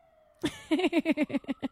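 A siren wails in a rapid yelping pattern, about eight quick rising-and-falling pulses in a row, moderately loud, after a brief faint steady tone. No talking is heard over it.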